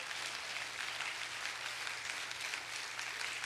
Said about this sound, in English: Somebody give God a hand clap of praise because his word is powerful.